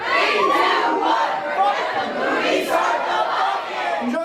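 A theater audience yells a chant in unison before a movie, counting "1, 2, 3" and shouting "start the fucking movie", loud and sustained, a dense wall of many voices shouting together for several seconds with rising bursts of emphasis.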